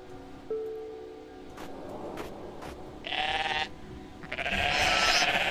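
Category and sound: animal, goat bleating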